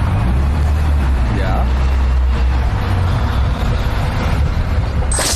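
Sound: car traffic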